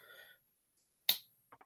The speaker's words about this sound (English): Well, I'm going to start strumming before I get over there. and I'm going to start clapping